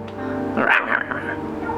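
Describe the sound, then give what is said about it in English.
A person imitates a dog barking with two quick, voiced "ruff" sounds, fairly loud, with a steady hum in the background. “Ruff, ruff.”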